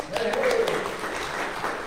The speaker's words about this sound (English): round of applause for us having a choir this morning.